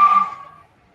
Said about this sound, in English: That's a station wagon. That wasn't a nice car. That was a station wagon.